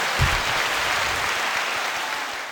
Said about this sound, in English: What happened in overtime? Kraken got a goal! Everyone clap!